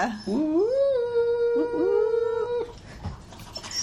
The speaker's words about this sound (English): She owns a dog that's whining right now.